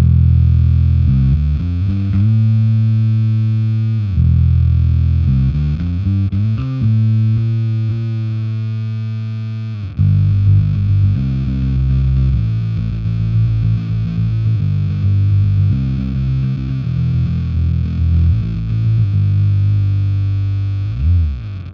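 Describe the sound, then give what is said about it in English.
A bass guitar with dead strings played through a heavy fuzz pedal on a separate channel of an HX Stomp, thick and buzzing with a full low end and dull, muted top. Choppy riffs with short gaps give way to a sustained, grinding passage. “And I've got this one on a separate channel, so you're not losing any low end from engaging the fuzz, which is an amazing thing you could do with the HX Stomp.”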